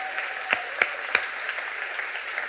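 An audience claps in a steady, hissing wash of applause, with a few sharper individual claps standing out early on before the clapping continues evenly at a moderate level.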